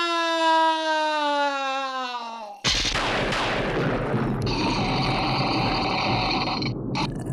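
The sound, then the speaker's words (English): Phone notification sounds, a sound effect from Final Fantasy VII, blare loudly: a buzzy, slowly falling electronic tone, then a harsh noisy burst, followed by layered high-pitched alert tones that hold steady until the end, with no talking. “Rose from my slumber from the sound of turn it off from the sound of someone's notifications going ape crap.”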